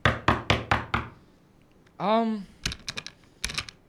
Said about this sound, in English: She must be out. The door's locked. Knock again if you don't mind.